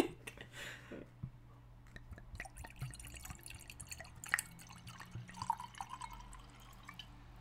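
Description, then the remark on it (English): Wine pours into a glass, heard as a quiet series of trickling, dripping splashes over a low steady hum, with no voices. “just poured my glass of wine and now I'm pouring her glass.”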